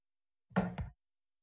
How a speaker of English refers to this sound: So I can't open the door. I'm bumping into something.